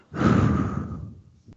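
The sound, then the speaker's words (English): Heavy mouth breathing from someone who can't breathe through the nose, close-miked: one long loud exhale rushing into the microphone with a broad airy roar, fading out, then a faint brief click at the end. “It just sucks because I can't breathe through my nose, so I'm breathing through my mouth, so it sounds like I'm breathing into the freaking microphone.”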